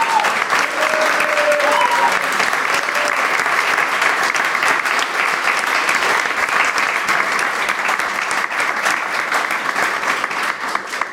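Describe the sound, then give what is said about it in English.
Sustained audience applause for four people's work over the last few seasons, a dense, steady crackle of many hands clapping at an even loudness for about eleven seconds, with a few faint whistles near the start. “So let's have a little bit of a round of applause, please, for Alex, Jill, John and Nick for all the work that they've done over the last few seasons.”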